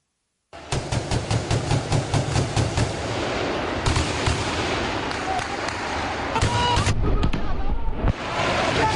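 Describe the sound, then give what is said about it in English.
Heavy gunfire in a Beirut street during a protest rattles off in rapid, repeated bursts, sharp cracks echoing between buildings over a dense, roaring background, with scattered shots continuing throughout and faint voices mixed in. “Heavy gunfire broke out today in Beirut during a protest organized by Hezbollah against the judge leading the probe into last year's blast in the city's port.”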